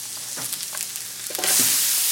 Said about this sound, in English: Throw that onion right on the flat top, make it pop. A little bit of vegetable oil on there.